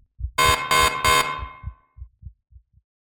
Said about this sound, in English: the scientist was awoken by the shrill beeping of the low oxygen alarm on the wall of his shared living quarters.